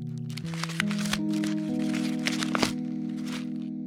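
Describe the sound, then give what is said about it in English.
A crumpled paper note being unfolded by hand, with irregular crackling and crinkling bursts for about four seconds over a steady low droning tone underneath. “I stoop down, pick it up, and start to uncrumple it.”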